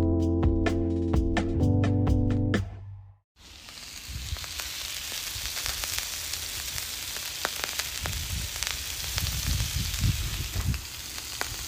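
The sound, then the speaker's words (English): A brief bit of tonal music cuts out, then food sizzles steadily in a frying pan, a dense hiss dotted with sharp crackles and pops throughout. “Listen to that sizzling away beautifully.”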